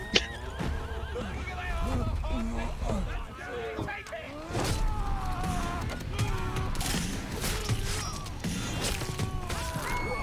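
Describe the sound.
A horse neighs and whinnies repeatedly amid a busy, noisy scene, with clopping hooves, occasional thuds and crashes, and voices mixed in underneath.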